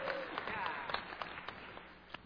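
An audience breaks into a brief round of applause, a dense patter of many hands clapping at a steady level, with a few sharper individual claps standing out and faint voices mixed in.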